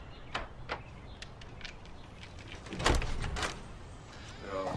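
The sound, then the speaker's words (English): The locked front door of a house: its handle is jiggled and the door rattled in its frame several times, with sharp clacks and a louder thud near the middle. “Since when do we lock this fucking thing?”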